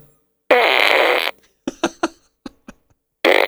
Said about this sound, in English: It's a Despicable Me fart gun.